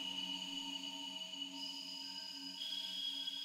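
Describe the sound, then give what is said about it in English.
A steady, shimmering hum of crystal tones coming from the crystals in a crystal chamber, with several sustained pitches layered into a continuous drone. Soft and unbroken throughout, with no voices. “Only focus on the breathing and the humming that comes from the crystals, the chamber, the crystal chamber.”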